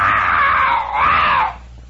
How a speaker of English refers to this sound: It went, the sound of a jaguar, you see, echoing throughout the Amazonian jungle.